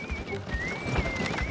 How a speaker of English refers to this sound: What's that sound? Whistling? There's a cart pulling up outside.